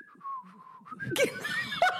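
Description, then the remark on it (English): A person whistles a steady, fairly quiet tune that dips slightly in pitch, then breaks off into breathy laughter with a few stray whistled notes mixed in. “But I know that whistle is a secretly aggressive whistle.”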